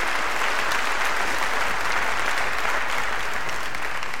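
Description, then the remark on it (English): A Methodist church audience breaks into sustained, loud applause, a dense steady wash of many hands clapping at once that holds at an even level for several seconds with no one speaking. “I will return to D.C. and inform them that Methodists can clap.”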